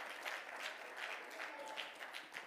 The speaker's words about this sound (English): Everybody say, praise the Lord. Why don't you clap your hands and praise him tonight? Hallelujah.